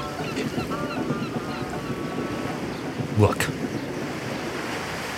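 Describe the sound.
Rough sea waves churn in a steady, loud wash with wind noise, one heavier surge crashing through partway in, while a voice briefly speaks over the surf.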